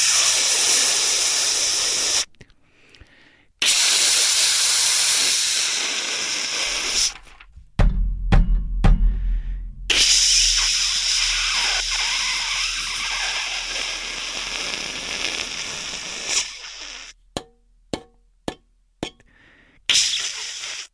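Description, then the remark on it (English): A steam radiator in New York City hisses loudly in long, steady bursts broken by sudden silences, with sharp clicks and knocks spattering through the pauses. No one speaks. “That's my fucking radiator in New York City.”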